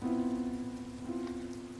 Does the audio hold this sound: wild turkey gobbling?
no